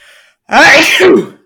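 A single loud sneeze bursts out after a brief quiet moment, sharp at the start and trailing off over about a second.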